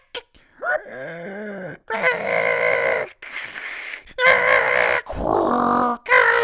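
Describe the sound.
A voice imitates an old invoice printer used for printing claims, producing harsh, strained squeals like a pig in about five loud bursts, each roughly a second long, separated by brief gaps.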